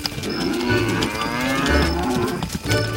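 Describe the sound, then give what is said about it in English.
Several cows moo in overlapping, drawn-out calls, fairly loud, forming a steady herd chorus for a few seconds with no talking. “The day passed, and Krishna returned home with all his cows.”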